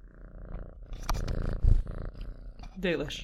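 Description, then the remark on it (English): A cat named Dalish purrs, a steady low rumbling vibration lasting throughout, with some rustling and a soft bump as she moves against the microphone. “Oh, someone is here and she is purring.”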